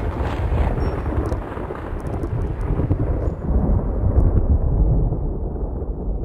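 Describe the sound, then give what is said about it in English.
Deep, sustained thunder rumbles through a stormy atmosphere, a heavy low roll that swells and subsides over several seconds with a faint wash of rain noise, no voices present. “the weather's really starting to look bad, Mike. It's probably just heat lightning”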